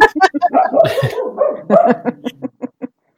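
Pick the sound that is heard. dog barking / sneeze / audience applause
dog barking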